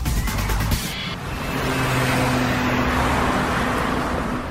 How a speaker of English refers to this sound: I'm waiting for the bus, and I hope it's a double-decker, because I love to sit at the top.